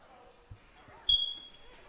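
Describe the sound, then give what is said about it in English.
A single high-pitched electronic beep sounds once at night, starting with a soft thump, holding its tone for about half a second and then fading, over faint background murmur. “Oh, the beep.”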